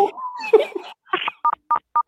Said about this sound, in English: Something's beeping. What is that? I don't know.